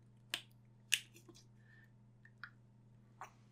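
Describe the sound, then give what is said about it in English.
A plastic water bottle being twisted open: a few sharp clicks and crackles spaced irregularly over a few seconds, over a low steady hum with no talking. “Why did I open up this water bottle? I spent a lot of water in here.”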